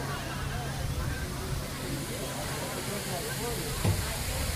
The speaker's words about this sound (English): Backwards waterfall. Oh, yeah. Backwards waterfall? Yeah. That looks really cool. This is what you do if you have imagination. It's a water ride.